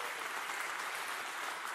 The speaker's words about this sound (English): Let's say thank you to God with a hand clap of praise.